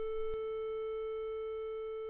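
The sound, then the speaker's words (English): A steady A440 reference tone sounds alone, holding one unchanging pitch for about two seconds at moderate volume, with a brief click near the start. “there's often a short tone played at the top of the hour on many radio stations. That's A440.”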